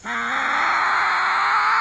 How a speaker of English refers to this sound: I love the sound of a growling Tasmanian devil.